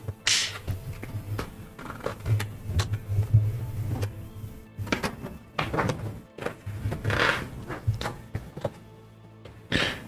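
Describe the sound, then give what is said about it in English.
Hollow wooden thunks knock against the weather-beaten wooden door of a lodging house at irregular intervals, sharp raps over a steady low rumble of background noise, with no voices. “You rap on the weather-beaten door.”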